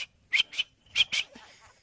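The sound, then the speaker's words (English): A cricket chirps four times in quick pairs, short bright high-pitched pulses with brief pauses between, clear with no talking around it. “And there's that cricket.”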